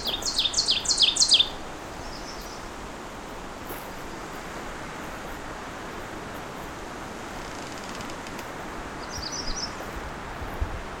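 An ovenbird gives a quick run of sharp, high ticking alarm notes at the start, then fainter ticks later over steady outdoor hiss like wind in leaves.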